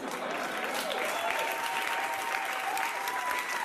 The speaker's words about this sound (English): The audience can't even muster up real applause.